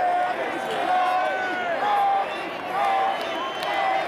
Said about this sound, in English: It's currently bases loaded. It's a 4-4 tie in the bottom of the seventh. I just want you to hear this crowd.